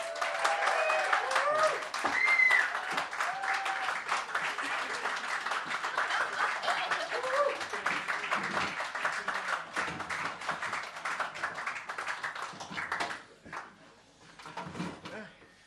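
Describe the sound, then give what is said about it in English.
Steady crowd applause welcoming this month's panel of Gráinne Maguire, Nick Doody, Alex Andreu and Robin Ince, with dense, crackling claps and scattered cheers, holding strong for several seconds before thinning out and fading to a few last scattered claps. “Keep the applause going, because it's time to meet this month's panel.”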